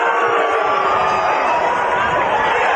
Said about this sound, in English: The 2-2 pitch. No! Oh, the crowd can't believe it.